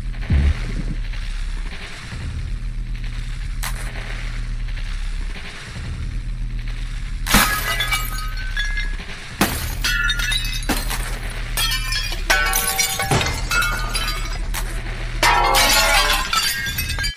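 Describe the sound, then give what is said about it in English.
Sharp bursts of phone screen glass cracking and shattering ring out over a low, droning rumble, starting sparse and then coming faster and denser, the shattering growing louder and more frequent toward the end. “Zoomed in, cracked glass shows on screen in time with the sounds.”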